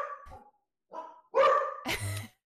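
A dog named Apollo barks in a quick run of four sharp, loud barks, the later ones harsher and more forceful, with short gaps between them and no talking.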